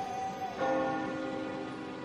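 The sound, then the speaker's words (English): A town clock chimes midnight with a long ringing tone, then strikes again around halfway through, its layered metallic overtones humming on softly at a low, distant-sounding level with no voices. “The town clock chimed midnight, and the distant bells made Thomas feel very sleepy.”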